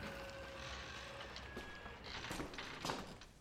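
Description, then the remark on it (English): Slow, soft footsteps walking to the pulpit inside an empty church at midnight on Christmas Eve, a handful of evenly spaced steps over a faint steady background hum, with no voices. “This is a part of the tale when we step inside the church at midnight on Christmas Eve and walk slowly to the pulpit.”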